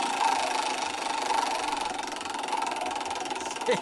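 A rapid, steady stream of small clicks from a spinning prize wheel, ticking so fast it blurs into a buzzing rattle that holds an even pace throughout.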